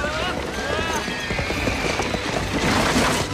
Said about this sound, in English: And they're off! The chocolate brown horse is taking a strong lead! And the 2 white horses are trying to catch up!